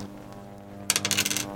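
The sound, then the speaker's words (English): Dice clatter across a tabletop in a quick burst of sharp clicks and rattles that settle within about half a second, rolled for a shock ability in a game, over a faint steady hum with no one talking. “Roll your shock ability.”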